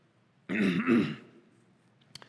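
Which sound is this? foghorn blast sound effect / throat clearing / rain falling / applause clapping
throat clearing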